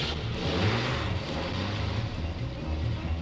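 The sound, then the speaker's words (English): A truck engine rumbles as it pulls away and starts down an old narrow dirt road, a low throaty drone over a constant wash of road and motor noise, steady in loudness throughout with no talking. “And as the truck started down the old narrow dirt road”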